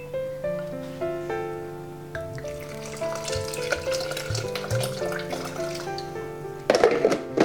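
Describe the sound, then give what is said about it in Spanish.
Half a litre of cold water pours steadily into a container of ground tiger nuts, a continuous splashing trickle whose ringing tone slowly rises as it fills, ending with a louder burst of splashing. “Ya tenemos triturada la chufa, ahora le pondremos medio litro de agua fría.”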